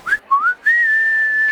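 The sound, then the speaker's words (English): A person whistles three rising notes, two quick upward swoops followed by a long, steady held tone, clear, with no talking. “You cannot have access to our menu items unless you can prove you are a whistler.”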